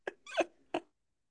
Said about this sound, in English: Are you packing a bowl right now? What's that noise? I'm clicking a pen.